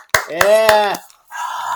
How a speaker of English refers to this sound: Yeah, give it up. Anyways, yes, it was the two of us, and only one of us clapped.